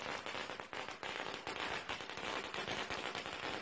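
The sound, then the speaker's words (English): A long string of firecrackers, lit for Chinese New Year, bursts in rapid, continuous crackling pops, loud, with dense overlapping bangs that never pause across the whole stretch. “This is a very typical firework tradition for Chinese New Year.”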